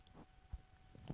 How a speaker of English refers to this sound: Let's make sure not to talk while the phone rings. Yeah, sure. We gotta be polite.